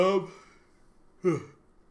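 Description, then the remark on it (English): A person yawns: a short voiced breath at the start, then a second louder, strained yawning sound about a second later, with quiet in between. “Let me wrap this shit up so I can take a nap or whatever I need to do to stop myself from yawning.”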